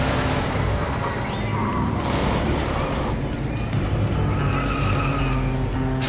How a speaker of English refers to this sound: Carl drives through the streets and arrives at the amusement park.